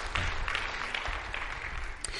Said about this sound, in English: We're delighted for you guys, right? Praise the Lord. Praise the Lord. Yeah, sure, we can clap for that.